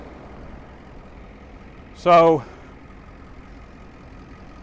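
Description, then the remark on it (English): Steady low rumble of street traffic and engines runs throughout, even, with no single vehicle standing out, as a person tries to cross the street to reach a car. A person briefly says a word partway through. “All right, I'm trying to cross this street here and get over to my car.”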